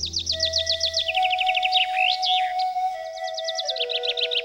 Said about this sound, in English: A little bird twittered on a branch above him.